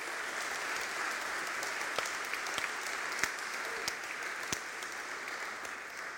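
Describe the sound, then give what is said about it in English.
A church audience applauds mothers on Mother's Day, a dense wash of many hands clapping at an even level with a few sharper individual claps popping out, and no voices over it. “We just applaud you today.”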